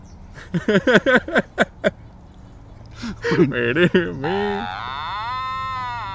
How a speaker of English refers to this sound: It's a cow.